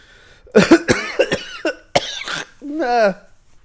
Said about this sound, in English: Basically, my thoughts on this trailer, that like that hacking and coughing. I mean, choke on it.